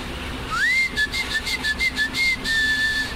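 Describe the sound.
A mother whistles a clear, tonal call to summon her children home: a rising opening note followed by a series of short repeated chirps, then a longer sustained note, moderately loud with no talking.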